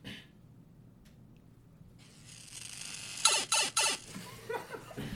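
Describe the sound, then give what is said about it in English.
Someone vocally imitates a green elevator as its doors close and it heads down: after a quiet moment, a breathy hiss swells, then a few sharp, noisy puffs and squeaky mouth sounds follow, fairly loud. “They walk over to the green elevator and hop in. They look around at the buttons and press floor 50, then press a button that says negative.”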